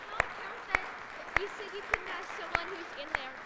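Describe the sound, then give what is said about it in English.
Applause for two church helpers, in slow, steady claps, about six sharp, evenly spaced hits, over a continuous hum of murmuring voices. “Let's give a round of applause for our two helpers.”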